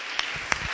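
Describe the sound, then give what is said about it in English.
Two sharp hand claps, about a third of a second apart, ring out over a steady background hiss with soft low thumps in between; no one speaks. “Come on, give him a hand.”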